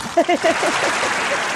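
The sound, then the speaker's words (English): Clapping added in post-production: a steady wash of clapping from many hands fills the whole moment, with a few brief vocal whoops near the start riding over the applause. “clap in post”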